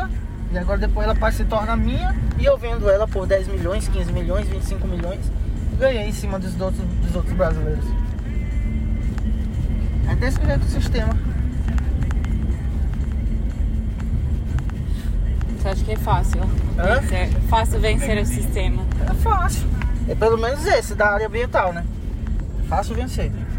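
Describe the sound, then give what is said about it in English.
Steady low engine rumble and road noise from inside a moving truck in a convoy on a muddy road in the Amazon, loud and continuous, with agents talking in the back of the truck throughout. “In the back of the truck I was in, the agents were commiserating.”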